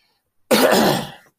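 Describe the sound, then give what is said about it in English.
A single harsh, rasping cough, lasting under a second and trailing off slightly, with silence before and after; the cough hurts the person's side. “I keep coughing in that freaking side.”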